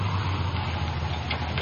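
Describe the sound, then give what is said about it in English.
A car's engine rumbles steadily, a low droning hum, before ending in a sudden louder thump as the vehicle comes to a stop. “Please do stop the car. I will let off.”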